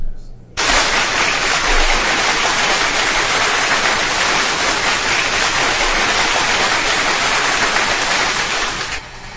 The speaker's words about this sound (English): Can we give a clap for those both ladies, please?